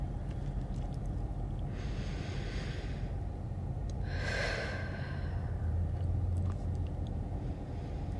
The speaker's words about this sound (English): And I'm just going to have you take 3 deep breaths. Really fill up and expand your ribs.